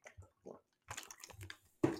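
Quiet mouth sounds of someone sipping water: a few short wet slurps and swallows, ending in a slightly louder gulp, with no talking.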